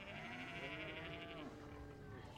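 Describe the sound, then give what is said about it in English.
Several cows low inside a dim, cool livestock barn lined with stalls for cows, pigs and sheep, their long, drawn-out moos overlapping, with one call sliding downward in pitch before fading into the steady lowing. “Past lines of stalls for cows and pigs and sheep.”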